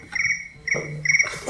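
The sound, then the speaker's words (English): A mobile phone ringtone, from a phone not set to silent, trills in three quick, evenly spaced bursts of high, buzzy electronic warbling, fairly loud, with no voices alongside. “For example, the sin of forgetting to set your phone to silent.”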